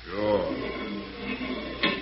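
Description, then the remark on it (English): A door is opened: creaking, rattling movement followed by a sharp latch click near the end, with a voice sounding faintly underneath. “Open the door.”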